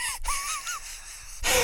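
A suppressed yawn: a strained, closed-mouth vocal sound with a wavering mid-pitched tone that rises and dips over about a second, followed by a short breathy burst.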